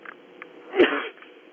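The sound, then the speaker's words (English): A single sharp sneeze bursts out partway through, starting with a quick explosive snap and trailing off in a short breathy hiss. It is moderately loud over a quiet, slightly muffled background. “Excuse me. Bless you.”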